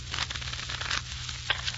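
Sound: playing cards being shuffled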